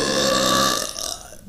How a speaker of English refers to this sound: I gotta burp. Should I burp right into the microphone? Absolutely. Oh, that was we just weak.